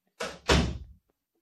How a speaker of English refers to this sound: Shut the door.